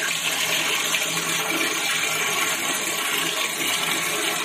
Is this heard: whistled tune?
no